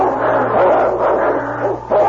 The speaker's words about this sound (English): Gathering every bit of his remaining strength, he launched forward quickly. His jaws clamped on the throat of the wolf, and they rolled snarling in a heap.